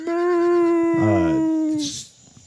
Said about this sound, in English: It sounds like they're dogs howling. It sounds like cats kind of like freaking out.